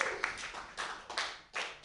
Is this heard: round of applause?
yes